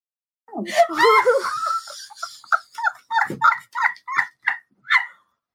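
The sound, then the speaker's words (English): A dog snoring, starting with a drawn-out whiny, wheezing breath, then a quick series of about eight short, raspy snorts in a steady rhythm, no talking; the snoring began after a fan was turned off. “No, we turned off the fan and he started snoring.”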